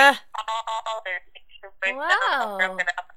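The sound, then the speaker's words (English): A garbled phone call breaking up, the voice chopped into stuttering, robotic fragments with brief dropouts and a warbling pitch swoop near the end, fairly loud. “Do all your friends break? Oh. Talk. Say something. She's really confused. She can't. She's like really broken.”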